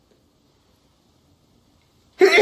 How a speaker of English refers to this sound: And sneeze coming on.